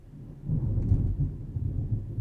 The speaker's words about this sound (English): Oh, I'm sorry if you hear thunder. It is storming so bad outside right now.